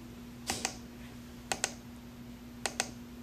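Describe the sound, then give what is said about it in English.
Three crisp double-clicks from a computer mouse or keys while working on financial reports in Power BI and Oracle BI, evenly spaced about a second apart, fairly quiet, over a faint steady electrical hum with no talking. “The third sound is the clicking of the financial reports that we have both on Power BI and Oracle BI.”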